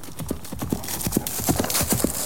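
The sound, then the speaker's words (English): Rapid, rhythmic hoofbeats of horses galloping around a track, a steady drumming of many quick thuds over a broad rumbling background, continuous throughout. “But it'll get to the point where I have to shut her door and shut our door because I could not stand the sound of the fucking horses galloping.”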